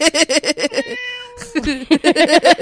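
A cat meows loudly in a rapid string of short, chirpy cries, broken by one sustained steady note, then resumes the quick repeated meows.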